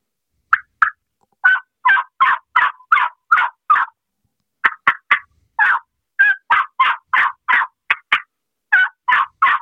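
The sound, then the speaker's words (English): A turkey call demonstrates more realistic, excited calling, quick strings of yelps broken up by added sharp clucks and short cutting notes, loud, in uneven bursts with brief pauses and no talking. “What I mean by realism, instead of just yelping, add some clucks, some little cuts, and add more excitement to the calling, like this.”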